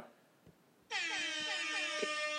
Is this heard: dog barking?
no